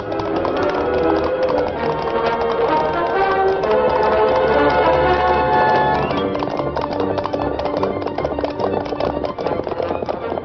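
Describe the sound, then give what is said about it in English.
The Lone Ranger's horse Silver gallops hard with rapid, steady clip-clopping hoofbeats, loud, over a busy rumbling background that stays dense throughout. “Instinctively, the Lone Ranger urged the great-hearted Silver forward without stopping to reason why.”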